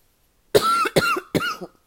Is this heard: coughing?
yes